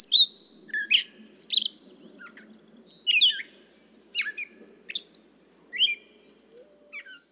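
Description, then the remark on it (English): A gray catbird sings a long, jumbled run of squeaky chirps, whistles and mewing notes in quick irregular bursts, clear, over a soft steady insect hum. “I thought at first that it was the gray catbird.”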